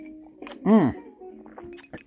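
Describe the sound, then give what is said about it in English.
Ice cubes clink lightly in a glass a few times as an afternoon drink is made, fairly quiet, with a brief voice-like swelling tone in the middle and a faint steady hum underneath. “Hear that? There we go. Ice cubes clanking.”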